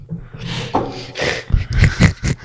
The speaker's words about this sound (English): My dog's trying to eat the table. Oh, no. Now he's licking it. He's hungry. Yeah, it's the leg.